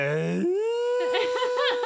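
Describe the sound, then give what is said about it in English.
A human voice imitates a bull elk bugle, starting with a low, buzzy guttural shriek that escalates into a sustained high-pitched squeal, then breaks into a wavering, pulsing warble. “And then that escalates into a high-pitched squeal.”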